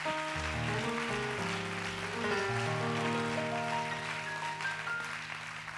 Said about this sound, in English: One more time, why don't you clap your hands unto the Lord and give him some praise.